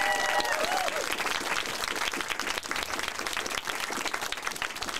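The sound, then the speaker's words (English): An audience breaks into sustained applause for the new panelists at a QVFX panel, dense overlapping claps holding steady throughout, with a few brief whistle-like tones at the start. “I give them a massive QVFX round of applause, please.”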